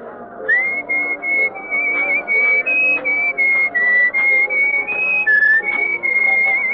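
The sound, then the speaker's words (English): A woman whistles a tune loudly, in clear sustained notes that step up and down with brief breaks between phrases, with faint background sound underneath. “Well, you were whistling our tune, so I thought you were expecting me.”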